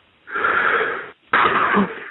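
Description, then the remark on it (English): A man gives two long, harsh, raspy deep coughs from his stomach area, each nearly a second, with a short gap between them. Loud and wheezy, with no talking. “just take a deep cough out of your stomach area, man, to get started.”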